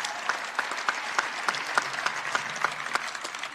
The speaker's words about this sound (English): Today we open up another chapter in Aggie basketball history, but first I'd like to say thank you to the band, our Spirit Squad, and Pistol Pete for being here. We really appreciate it. Big round of applause for those guys. Thank you.